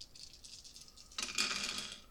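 A handful of five dice rattle and clatter, a light shaking rattle at first, then a louder burst of tumbling clicks that tapers off. No one speaks.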